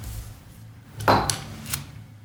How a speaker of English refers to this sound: Right, okay, let's pour this into the old Glencairn.